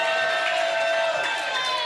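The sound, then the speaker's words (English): An audience cheers and applauds as someone is called up to the front, a steady, dense wash of noise that stays loud for the whole couple of seconds, with scattered voices shouting within it. “Everybody clap for Morgan.”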